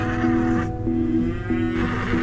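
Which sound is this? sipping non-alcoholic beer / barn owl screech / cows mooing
cows mooing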